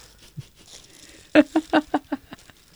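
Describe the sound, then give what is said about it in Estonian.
A plastic-wrapped package is handled and torn open: a quick run of about six sharp, crinkly crackles over roughly a second, with no talking. The package is red with white hearts and holds cold food wrapped in plastic film. “See on toit. See on külm. See on kile sees.”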